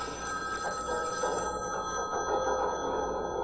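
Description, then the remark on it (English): A telephone bell rings continuously with a bright, steady metallic trill, fairly loud, sustained throughout with no voices over it. “Your phone's ringing.”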